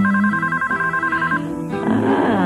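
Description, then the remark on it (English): A telephone with BellSouth caller ID rings with a fast, trilling electronic warble for about a second and a half, fairly loud, then gives way to a swell of layered musical tones. “So I can decide whether I want to pick up the phone or not.”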